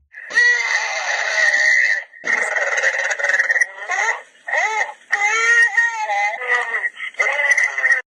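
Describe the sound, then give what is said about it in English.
Tinny phone voicemail recording of drawn-out, wavering cow moos, several in a row with short breaks between them, fairly loud, over a steady high whine on the line. “So that's your animals there. Yeah, well, you got your cows.”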